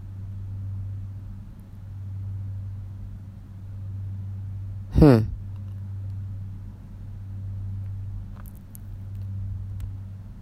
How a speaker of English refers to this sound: I thought it was going to be another, like I can hear it in the distance. And a few minutes ago, here it comes. Oh, it's rolling. I can hear it. Rolling thunder now makes sense. I totally get it now. Rolling thunder.